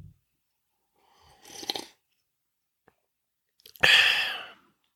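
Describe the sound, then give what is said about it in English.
A noisy slurp of hot Freedom Hill Coffee, a deep, dark, rich roast, then a brief pause and a louder, breathy exhale of satisfaction, with no talking. “I'm going to have to pause for just a moment and enjoy a sip of my favorite beverage.”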